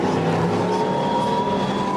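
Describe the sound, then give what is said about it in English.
Race car engines drone loudly, a steady, layered roar with sustained harmonic tones as the cars on the grid pull away together for the formation lap, with no voices over it. “That's about a third of the grid gone now.”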